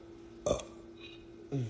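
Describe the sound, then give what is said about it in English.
A short, throaty burp rings out after drinking a drink, followed after a brief pause by a second lower, gurgling belch. No talking, just the two burps over faint background hum. “All this burping from this drink, so good.”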